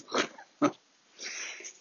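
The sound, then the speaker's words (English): A three-legged dog snuffles and snorts as it moves around, with a short squeaky grunt in the middle and a stretch of breathy sniffing and rustling afterward. “Oh, here comes one dog, the three-legged wonder.”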